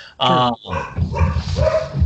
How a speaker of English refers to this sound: I don't know if you can hear that. Those are my dogs.